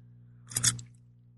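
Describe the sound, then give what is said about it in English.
A quick sip of tea: a short, airy slurp in two close bursts lasting well under a second, over a low steady hum, with no talking. “Take a sip of my tea here.”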